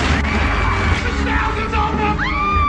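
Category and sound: sound effect, screaming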